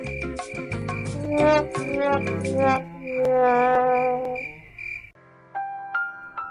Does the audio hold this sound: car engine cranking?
no